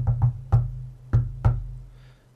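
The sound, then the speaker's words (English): Five dull, thudding knocks on a door in an uneven rhythm: two quick raps, a single one, then two more after a short pause, with no voices. “And I was like, oh, well, that's not Caitlin's normal lock or knock, so that's confusing.”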